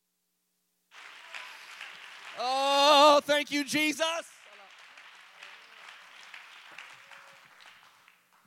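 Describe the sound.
A church audience claps hands in praise in a steady, dense wash of applause that runs for several seconds, while a preacher's loud voice calls out over it partway through before fading back into the clapping.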